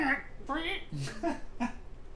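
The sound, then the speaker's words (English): A person vocally imitates a chicken, making a handful of short, clipped clucking syllables in quick succession, fairly loud, with no other voices. “Bawk, bawk, meh.”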